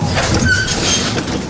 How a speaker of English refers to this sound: So, am I en route to a new career? And go ahead and really lean into the brakes.